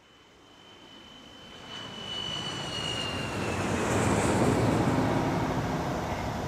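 A loud airplane engine roar builds steadily over several seconds, a broad rushing drone with a high whine fading across it, with no talking; a plane in Minneapolis on a hot, sunny August afternoon.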